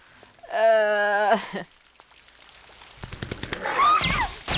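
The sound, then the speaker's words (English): Rain patters down in a steady, crackling spatter during the second half, following a brief, loud, drawn-out vocal tone near the start. “I'm sure the rain will wash those chunks out of your clothes in no time.”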